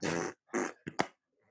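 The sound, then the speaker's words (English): A loud fart comes in a few sputtering bursts: two longer, noisy blasts followed by two quick short pops, then a faint trailing rustle. “Just farting.”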